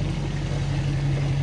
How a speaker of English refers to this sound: New neighbors. That's a big truck. They're from Texas.